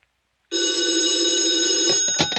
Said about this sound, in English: Oh, if the phone rings, I'll answer it because it'll be for me.